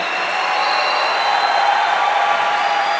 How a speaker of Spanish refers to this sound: Si vas a aplaudir, apláudele al Rey. No te detengas. No te detengas. No te detengas. No te detengas. Si Él te impulsa, aplaudirle. Si Él te impulsa, aplaudirle. ¡Apláudele!